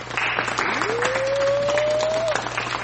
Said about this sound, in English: A black man, only one person got it. You get the golf clap.